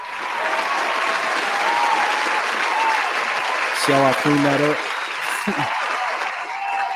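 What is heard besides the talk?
audience applause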